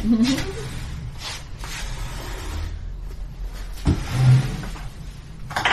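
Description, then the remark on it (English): Dice rolled for a stealth check clatter and tumble all the way across a table in a few scattered bursts of clicking against the surface, with a sharper knock near the end, over a faint background murmur. “Go dice roll!”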